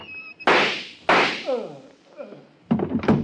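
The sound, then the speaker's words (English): Two loud, sharp gunshots crack in quick succession, each with a short fading tail, followed by a brief voice and another harsh burst of noise. “I've got a gun.”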